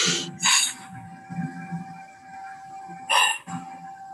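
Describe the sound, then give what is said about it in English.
Short, breathy bursts of air blown through a straw, two quick puffs at the start and two more later, over a low murmuring background and a faint steady tone. “And as you blow into the straw, I want you to feel like there's this big pressure.”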